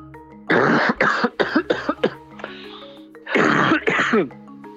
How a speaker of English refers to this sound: Did we get a cough?